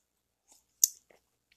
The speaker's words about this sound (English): I'm just going to take a sip of coffee real quick.